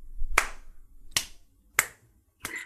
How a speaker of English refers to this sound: Slow clap, everybody. Slow clap. Awkward clap, but hey, you know what? Everybody in their car just hopefully didn't take their hands off their steering wheel